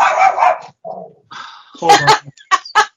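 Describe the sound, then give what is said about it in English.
A dog barks repeatedly in short, sharp, loud bursts, with some yelping, excited barks spaced unevenly over a few seconds and no one speaking. “Because that dog is way more wound up than this song.”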